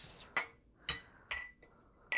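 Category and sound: household object, beer glasses clinking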